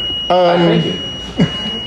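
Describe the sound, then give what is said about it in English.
A fire alarm gives off a thin, steady high-pitched tone throughout, faint, while a person's voice briefly speaks over it. “What's sorry, your fire alarm? Fire alarm.”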